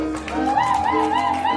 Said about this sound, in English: Did you hear that? That's a huge crowd, standing room only.